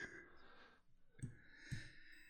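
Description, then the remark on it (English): Two sharp, quiet computer mouse clicks about half a second apart, as someone clicks the wrong thing while trying to play the next song, over a low steady background hum with no talking. “I'm clicking the wrong thing.”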